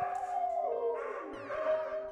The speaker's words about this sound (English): The dog apparently barked late at night and never stopped. And once it got started, so did other dogs in the neighborhood.